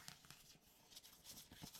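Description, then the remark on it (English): Half a page of paper being carefully torn out slowly, a soft, crackly rip made of short papery bursts and rustles spread across a couple of seconds, fairly quiet with no voices. “Take a page. I will carefully do it so it doesn't pull it from the center. I will kind of do a half page.”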